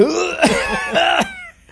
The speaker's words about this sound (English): He'll cough in his hand first.